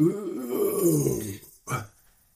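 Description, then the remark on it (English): A long, low, rumbling burp, its pitch sagging as it drags on, then a brief pause and a short, sharp second belch. “And you burped like 400 million times”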